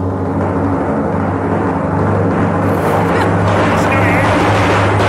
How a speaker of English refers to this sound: I want you to do the drum roll, you idiot.